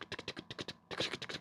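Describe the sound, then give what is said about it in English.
Rapid typing on a computer keyboard, a quick run of clicking keystrokes in a steady rhythm, broken by a brief pause before the tapping resumes at the same brisk pace. “So I start typing, and I had gotten to see some of her pictures.”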